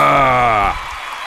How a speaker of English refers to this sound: Why do I feel like your applause is louder?